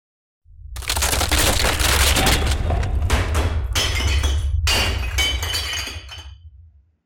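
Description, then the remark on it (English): A building collapses and crashes to the ground with a loud, sustained crash: deep rumbling underneath and waves of shattering, splintering debris for about six seconds before it tapers off. No voices. “One last terrifying shot of Crimson Viper stumbling as he tries to get away from the falling building before it crashes to the ground and he disappears out of sight, certainly crushed.”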